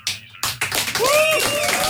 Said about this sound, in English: And I'm just curious to see if I can get a round of applause for this official moment, ladies and gentlemen.